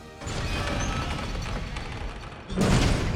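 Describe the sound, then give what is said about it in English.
A huge door at a cave entrance creaks open in a long, grinding groan lasting a couple of seconds, then a louder rumbling, scraping burst as it swings wide. Fairly loud, with no voices. “The door opened and a giant figure appeared before them.”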